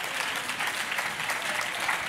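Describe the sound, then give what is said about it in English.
A church audience claps their hands to thank the Lord, a steady, dense wash of applause that holds at an even level for about two seconds, with no voices standing out. “Come on, clap your hands and say, and thank the Lord for bringing you out.”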